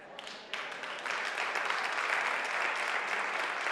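Steady applause from an audience, a dense wash of many hands clapping that swells slightly after the first second and then holds at a constant, moderately loud level.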